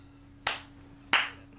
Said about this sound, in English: clap, clap, clap.